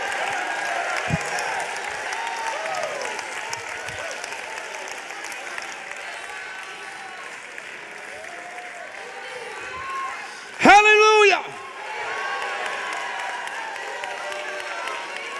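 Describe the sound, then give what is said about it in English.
An audience roars and applauds in a steady, dense wash of clapping and cheering, broken near the end by one loud, high sustained shout rising above the crowd. “Do you hear the roar that's in the building, saith God?”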